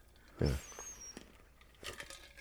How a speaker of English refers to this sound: Yeah. Sorry. I just like slurped in my coffee.